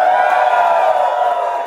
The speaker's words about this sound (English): Hello and welcome to FinTech Insider After Dark number 6. Crowd, can you please make some noise for us in Atlanta?